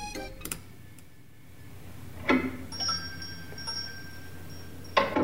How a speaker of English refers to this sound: He found us the perfect yogurt shop door sound. It really brought the event to life.